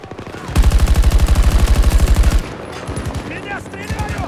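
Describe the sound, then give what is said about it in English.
Video game jet gunfire strafing the player's squad sprays in a loud, rapid, evenly pulsed burst lasting about two seconds, then gives way to a quieter, continuing rattle of shots with brief high chirps. “That fucking jet is spraying us down.”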